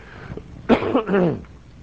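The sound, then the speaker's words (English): A single cough from a speaker who is just getting over an illness, a sharp burst that rolls into a rough, throaty rumble as if clearing the throat, with no talking around it. “I'm just about over whatever it was that gripped me, but if I cough on you, do forgive me.”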